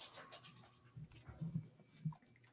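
A puppy whimpers softly in short, high, breathy bursts, with faint rustling underneath and no voices.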